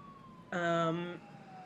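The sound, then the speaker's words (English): A short, loud siren blast from a speeding ambulance with its lights on. The bright, steady tone lasts well under a second before cutting off, leaving a faint background hum. “The ambulance has the lights on and they're speeding.”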